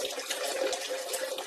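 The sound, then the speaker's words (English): A forceful stream of urine from a man pours steadily into water, gushing like a wide-open faucet, continuous throughout with no one talking. “That stream isn't appropriate. It's like he turned on a faucet.”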